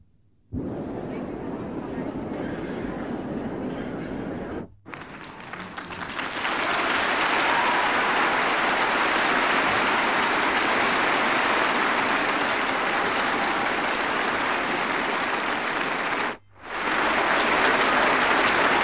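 A large concert crowd applauds in a dense, steady roar of clapping, briefly cutting out twice before swelling back louder and sustained, with no distinct voices standing out; applause on a studio album recording, leading from one song into the next.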